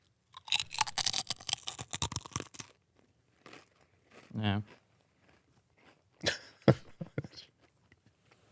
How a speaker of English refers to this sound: Listen to this, all right? Here's the crunch factor, which I know you're curious.